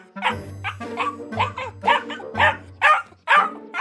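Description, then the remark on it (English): A German Shepherd puppy barks over and over in quick, high-pitched yaps, about two each second, fairly loud with no one talking. “This sounds like an outstanding time for me to surprise my wife on her birthday with a German Shepherd puppy.”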